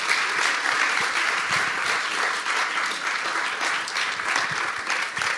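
A crowd applauds steadily, a dense wash of many hands clapping at an even, fairly loud level for several seconds without pause or voices on top.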